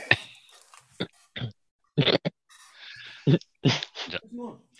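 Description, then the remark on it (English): A dog barks in a rapid, irregular series of sharp, loud yaps, some in quick pairs, with brief gaps and faint background rustle between them. “The dog clearly has an opinion on undersized D tackles.”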